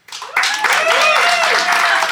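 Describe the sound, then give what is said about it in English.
A live Phoenix audience bursts into loud, steady applause after a brief quieter start, applauding to vote on who is in the right in a dispute. Scattered cheers and voices are mixed into the dense clapping throughout. “So I'm going to allow our live Phoenix audience to make the call.”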